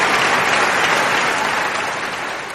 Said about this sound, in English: Yeah, the crowd was long. Long applause for you. We don't usually get that long of applause for guests, so well, I love it.